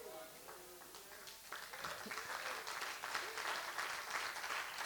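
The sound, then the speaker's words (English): A voice is briefly heard before a church audience breaks into applause, swelling into a dense, steady patter of many hands clapping that carries on to the end. “I salute you, but one hand cannot clap, church.”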